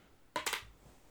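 A die is rolled and lands on orange, giving a quick pair of sharp, bright clatters a moment apart that fade into quiet. Nobody speaks.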